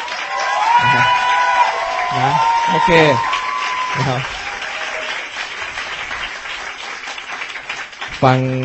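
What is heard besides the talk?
audience clapping loudly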